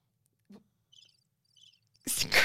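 Two soft, high-pitched bursts of chirping from tiny, quiet crickets against near silence, faint, before a sudden loud rush of noise cuts in at the end.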